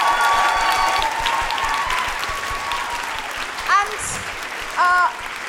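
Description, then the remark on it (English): A theatre audience at Giant Dwarf claps in a dense, steady round of applause for the theatre's staff, with a shrill whistle at the start and a couple of sharp rising whoops near the end. “Can I please have a big round of applause for everybody who works here at the theatre?”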